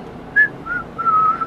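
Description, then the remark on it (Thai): Someone whistles a short, high tune in the morning while sitting and polishing a shield: a brief bright note, a softer middle note, then a longer sustained tone, with no talking. “เออ anyway เขาก็คือจะมานั่งขัดโล่กันนะตอนเช้าก็แล่นแล่ผิวปากก็ที่รัก”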